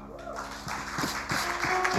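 An audience claps together in a steady, dense wash of applause, with a few sharper claps standing out as the sound swells slightly over two seconds.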